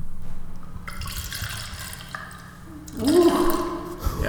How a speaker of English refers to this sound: Pour one out for the boy, Craig. Making this one a bit strong.